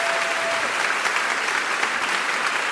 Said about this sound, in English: And I think Mo deserves a round of applause for that generosity. Thank you so much. Thank you.